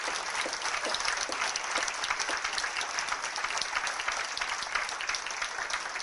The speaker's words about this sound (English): so a little round of applause for